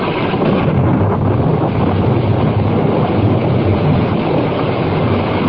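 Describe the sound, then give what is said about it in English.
A steady, even hiss of gentle rain falls without pause, a dense wash of soft patter that holds at the same level throughout, with no voices. “Rain. Oh, gentle rain. The drought is ended.”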